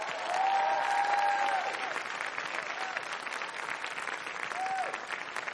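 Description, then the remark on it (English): A large church audience claps steadily and loudly throughout to welcome a woman minister as guest speaker, a dense, sustained wave of applause with a few rising whoops and whistles cutting through near the start and end. “I want you to give a great big Faith Church welcome to Deborah George”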